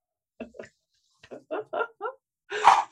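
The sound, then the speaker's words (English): A dog lets out a quick series of short, yappy barks in uneven bursts, then one louder, harsher bark to finish, with no talking in between. “That's all right. Every horseman has a dog.”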